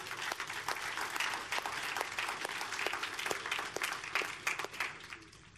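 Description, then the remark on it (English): A church audience applauds steadily, a dense wash of clapping with sharp individual claps standing out, holding at a fairly even level before thinning slightly at the end. “Yeah, you can clap.”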